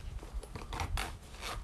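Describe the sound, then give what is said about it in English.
A zipper is drawn closed in a series of quick, raspy ratcheting pulls, with nobody speaking. “Zip up back ASMR.”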